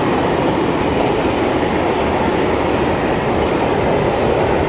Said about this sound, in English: Boy, that's a big train. Industrial train. And it goes to Germany.